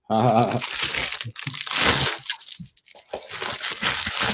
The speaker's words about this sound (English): I do, and I will show that to you. I got a lot of junk in my drawer here.